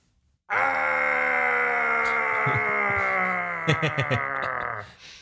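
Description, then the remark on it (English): James Earl Jones, voicing Mufasa as the lion plummets to his death, lets out a long, loud, strained groaning cry, one held "aah" lasting about four seconds at a nearly steady pitch before cutting off, with a few brief knocks near the end. “And it just sounds like an old man going, ah!”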